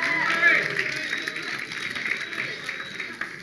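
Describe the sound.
An audience breaks into applause, a dense, steady wash of clapping with cheering voices mixed in, holding at a fairly even level for a few seconds.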